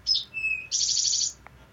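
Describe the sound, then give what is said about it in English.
An eastern towhee sings its song: two short high introductory notes, then a lower steady whistle, followed by a rapid buzzy trill. Clear and moderately loud against quiet background, with no talking. “Another one that'll be along a woodland edge is an eastern towhee, and these are beautiful birds.”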